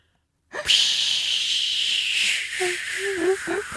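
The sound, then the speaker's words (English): A voice imitates a plane taking off with a sustained breathy, hissing whoosh that starts abruptly and holds steady for about three seconds, ending in a few low voiced warbles. “I think that's supposed to be a plane. Yeah. Yeah, it sounded exactly like a plane.”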